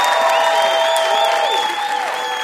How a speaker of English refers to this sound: Give Peter Sarsgaard a huge round of applause for being here at VIP.